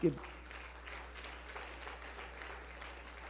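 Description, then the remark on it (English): Applause from a church audience during a sermon, clapping for God: a dense, continuous patter of many claps at steady moderate loudness for a few seconds, with a brief louder burst at the very start. “Can you give me a hand clap?”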